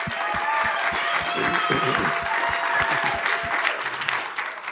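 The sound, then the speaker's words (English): An audience applauds in a dense, sustained wash of hand clapping for about five seconds, with a steady beat of low thumps underneath and scattered cheering voices mixed in. “Can we give these folks a hand clap?”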